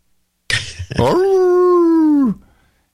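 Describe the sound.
A single wolf howl rings out loud, holding a steady pitch for about a second before sliding down and fading. A short breathy rush comes just before it, with no talking.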